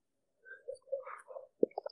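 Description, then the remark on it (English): Someone drinks water: soft, quiet slurping sounds lead into one sharp, distinct gulp, followed by a couple of small wet clicks from the mouth and throat. “Ooh, the gulp and everything.”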